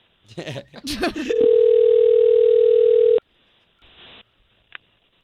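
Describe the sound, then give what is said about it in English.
A short burst of voices gives way to a steady, loud single-pitched telephone tone lasting about two seconds as morning radio show hosts at K92.3 in Central Florida place a call to a listener, followed by near quiet, faint line noise and a small click. “Okay, so we're going to call her right now and give us a moment to talk to her first.”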